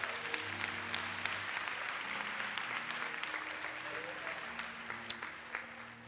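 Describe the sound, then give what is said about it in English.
A church audience breaks into sustained applause at a pastor's request after the morning message, dense clapping from many hands for several seconds, with a low murmur of voices underneath. “Give the hand, Lord, a hand clap if you got it, all right?”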